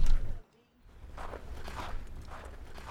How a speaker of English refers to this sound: Sound of footsteps. It's snowing. Out here look all pretty. Like white Christmas trees.